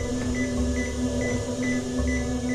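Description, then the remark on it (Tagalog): Hospital machines at Medical City in Pasig beep in a steady, repeating pattern of short high-pitched tones over a constant low electrical hum, with no one speaking, while medical workers attend a patient. “sa gitna ng tunog ng mga makina.”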